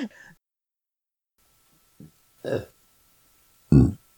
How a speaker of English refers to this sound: Nice. Are we keeping those burps in?